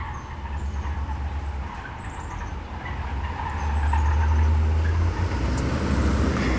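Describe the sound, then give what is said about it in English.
A badly misaligned, broken-down car drives past, its heavy, rough rumble swelling midway through and staying loud to the end, with no one talking. “Okay, a car that is very broken just drove by.”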